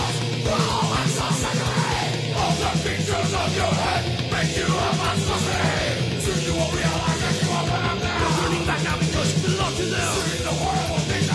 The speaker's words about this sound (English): Oh, it's a good scream right here, real quick.